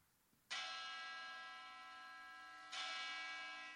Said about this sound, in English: Two bells! Double church bells.